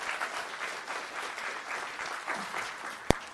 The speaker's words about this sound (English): If you're glad they're here, give them a good round of applause.